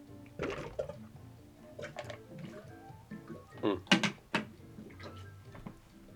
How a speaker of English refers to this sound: Yeah. Don't know if you heard that, but that's my big, 2-liter jug of water.